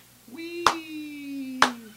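Two sharp hand claps land about a second apart, cutting through a long, steady vocal tone held underneath, like someone sustaining a drawn-out shout.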